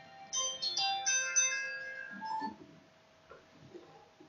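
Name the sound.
phone ringing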